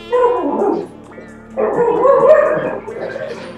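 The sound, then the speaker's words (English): A dog named Winnie lets out a short burst of barks followed by a longer run of high, excited yips and whines, fairly loud, with no talking over it. “Yes, I can hear the dog.”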